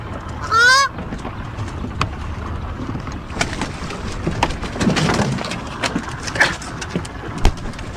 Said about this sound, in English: This guy's a mighty crazy ass goose.